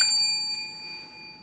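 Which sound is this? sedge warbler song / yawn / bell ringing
bell ringing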